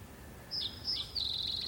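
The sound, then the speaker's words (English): Several thin, high-pitched bird chirps ring out in quick succession from close-by birds that are no longer flying, over a soft outdoor background hum with no voices, on a cool, misty day in Florida. “Where did all the birds go? We can still hear them.”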